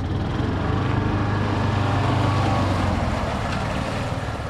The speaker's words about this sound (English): convoy heads into the park. In addition to the spray trucks, the entourage also includes a three-wheeled, all-terrain vehicle.